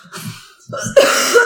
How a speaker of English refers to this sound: Do you want to edit your cough out? Yeah. Alright, where was it? Well, that's the second cough, so I'm going to have to listen to, you know, It's near the end.